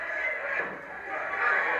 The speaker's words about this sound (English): Bill Alfonso with that infernal whistle.